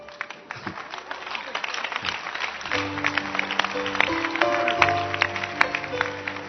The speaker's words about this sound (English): Clap your hands for her.